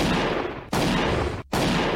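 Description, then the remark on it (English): Dense, continuous bursts of gunfire crackle loudly in overlapping volleys, broken by two brief gaps, with no voices heard, during a firefight with police. “Leroy, are you in a firefight with the cops?”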